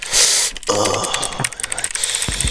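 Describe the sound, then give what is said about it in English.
A rapid, uneven burst of sharp, crisp clicks from a mechanical gaming keyboard, keys clattering loudly and almost continuously for a couple of seconds with a bright, snappy edge. “It's fire though, cause it's my first like gaming keyboard. So listen to the fucking clicks.”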